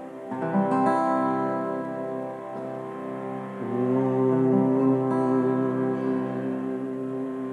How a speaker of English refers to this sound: So first, Oming. Let's just Om a couple times on the C. Humming first.